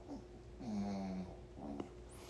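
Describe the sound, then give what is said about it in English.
A small dog snores softly, with a couple of wheezy, slightly whistling breaths in slow succession and no one talking. “It's my little dog snoring.”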